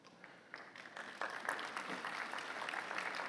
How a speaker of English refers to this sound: I don't know why you're clapping because I didn't see any hands.